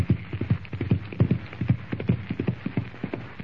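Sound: horse hooves galloping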